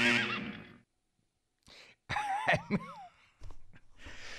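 A horse whinnies loudly in a few shrill, wavering bursts, broken by a short pause and breathy snorts, with no one talking.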